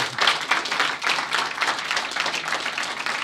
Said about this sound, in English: And we should applaud for that.